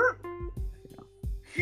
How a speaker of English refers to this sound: Apparently my neighbors' dogs are loving my T-Wolves prediction. They're barking at me like saying, "Hey …, great predictions. We love it."